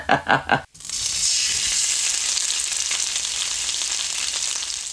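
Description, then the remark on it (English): A few quick thumps, then a loud, steady hiss of chicken frying in hot oil, with crackling grease pops scattered throughout. “you could hear that and the grease popping.”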